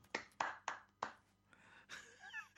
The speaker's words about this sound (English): Oh, with the patronising clapping there.